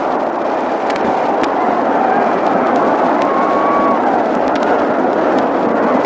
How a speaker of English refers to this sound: He's out at first. Werber to McCormick. Listen to that yell from the crowd.